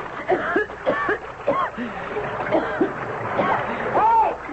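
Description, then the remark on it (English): Water churns and splashes loudly as a person is thrown over the side of a boat into the Nile and thrashes about, with excited shouting voices rising over the sloshing throughout. “I'm in the river!”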